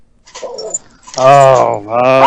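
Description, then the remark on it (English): A dog barks loudly, two drawn-out, tonal barks following a softer, fainter vocal sound at the start. “Sorry, Mark Dog right here.”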